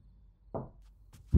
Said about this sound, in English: As Samantha went to bed, Susie was about to join her before the sound of thumping came from the porch.